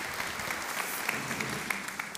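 Steady audience applause welcoming a guest, a dense wash of many hands clapping at an even loudness for a couple of seconds, with a few sharper individual claps standing out.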